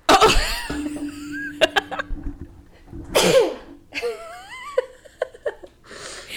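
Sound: a person sneezing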